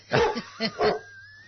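A dog gives three quick barks in close succession, the first longest, followed by a brief quiet stretch with a faint thin tone in the background.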